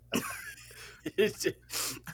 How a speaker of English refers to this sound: And then the cough you had after reinforced my idea. You sounded mad old when you coughed for some reason.